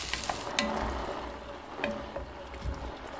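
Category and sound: food or drink, vegetables sizzling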